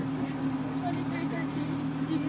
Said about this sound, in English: I think my exhaust pipe disconnected from my exhaust manifold. That's why my exhaust is so loud. It's all like rumbling. They definitely can hear that.